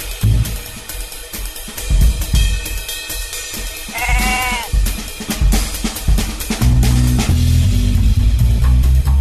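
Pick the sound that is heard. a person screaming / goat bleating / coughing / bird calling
goat bleating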